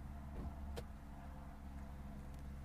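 A car that has just pulled up idles with a steady, muffled low rumble, and a single brief sharp click cuts through partway as someone gets out of the car.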